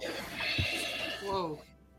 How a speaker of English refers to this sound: your breathing is very loud all of a sudden. I don't know what is happening.